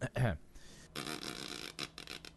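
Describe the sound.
A buzzy, sputtering raspberry blown with the lips, starting with a short voiced blurt and followed by a longer rattling, flapping buzz, with no talking.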